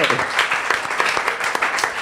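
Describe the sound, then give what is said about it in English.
A crowd in Kentucky applauds, many hands clapping at once in a dense, crackling wash that stays fairly loud and steady from start to finish, with no voices standing out. “And let's give Finley a round of applause.”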